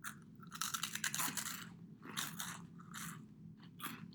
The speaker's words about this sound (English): Wait, can we do really ASMR? Good. A crunchy crunch. Ready?